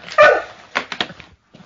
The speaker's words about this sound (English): Cat messing with the dog and the dog responding accordingly.